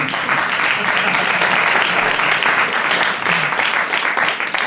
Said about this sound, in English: To my left, please give a big round of applause to the Thag Simmons Institute for Empirical Research.